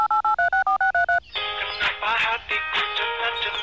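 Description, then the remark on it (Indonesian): A quick run of about eight clear, beeping keypad dialing tones as someone dials a phone number, evenly spaced and loud, followed by a burst of harsh, crackly line noise. “Coba coba coba aku yang telepon.”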